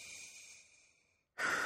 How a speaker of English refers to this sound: There's some woodiness on there as well as I sniff a little bit deeper. It's mainly on the end of the sniff.